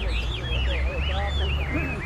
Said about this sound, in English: Every morning, rain or shine, Chinese immigrants show off their pets, so-called Wame birds. I visited the park on a recent Saturday morning and was immediately greeted by an avian chorus.